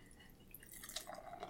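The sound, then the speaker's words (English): Moose Drool brown ale from Big Sky Brewing Company in Montana, 5% alcohol by volume, pours into a glass with a soft, fizzy trickle and scattered bright drips and splashes, fairly quiet, with no talking. “Want to pour?”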